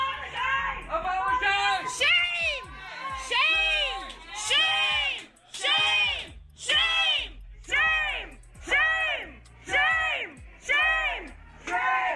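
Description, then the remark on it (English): A crowd of protesters yells and chants at Nielsen while she eats, in loud, rhythmic bursts, about seven repeated shouted phrases with brief gaps between them, voices rising and falling together in unison. “Take a listen to them yelling and chanting.”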